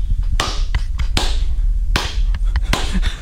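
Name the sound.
slow clap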